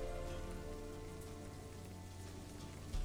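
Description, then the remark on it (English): Steady rain patters down on a hard surface, a dense, even hiss of drops that holds constant throughout, with a faint low rumble underneath and no voices. “Yeah, rain always makes them jump.”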